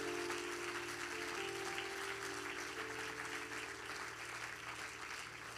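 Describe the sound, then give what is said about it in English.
A church audience applauds their pastor with steady, dense clapping that holds at an even level for several seconds, a continuous crackling wash of many hands with a low hum underneath. “So I think we should give him a hand clap for all the things that he's doing.”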